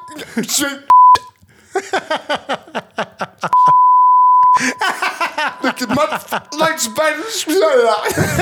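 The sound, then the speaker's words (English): Two loud, steady censorship bleeps from a bleep app on a phone, a short one early and a longer one about a second later, cutting into lively speech and chuckling voices. “I have a bleep app on and my another phone.”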